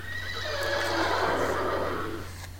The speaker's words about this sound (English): Well then, if you've listened to Dimland Radio, got to the end of it, I had to listen to the horses whinny. Sorry.